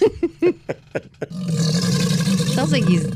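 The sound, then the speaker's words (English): An alligator bellows: a run of short, deep grunting pulses gives way to a long, rumbling roar that rolls on loudly and steadily, harsh. “Play the old chomper. Again.”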